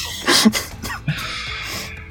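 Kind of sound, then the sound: human body sound, sneeze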